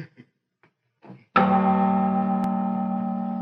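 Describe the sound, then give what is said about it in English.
A single heavy strike of a large bell of the cathedral from Hugo's story of Quasimodo booms out after a few faint, brief murmurs, its deep, rich tone ringing on and slowly fading. “deaf from his years of ringing the cathedral's bells, Quasimodo.”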